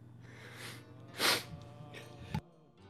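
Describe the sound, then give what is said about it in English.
A single sharp, hissing sneeze bursts out midway, preceded by a soft breathy intake and followed by a brief snort-like puff over a low steady hum. “Bless you.”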